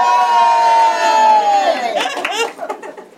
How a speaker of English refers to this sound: Okay, wait! The crowd goes wild!